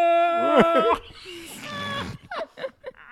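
animal, whale sounds

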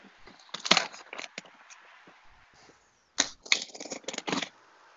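household object, gift being unwrapped

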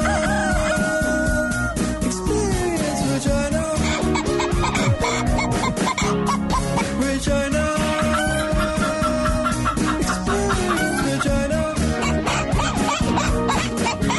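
bird, chickens clucking

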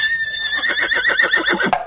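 animal, horse whinnying

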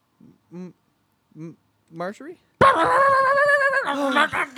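animal, dog barking and whimpering

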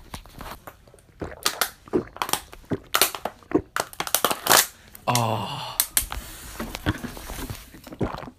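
human body sound, gulping water

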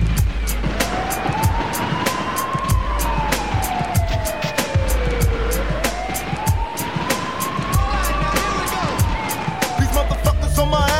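vehicle, police siren

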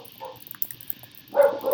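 animal, dogs barking

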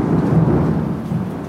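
nature, thunderstorm with rain

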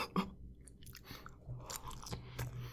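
food or drink, chewing food

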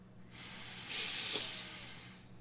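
human body sound, sniffing a drink's aroma

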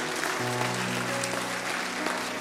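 crowd, audience applause

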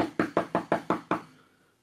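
household object, knocking on a door

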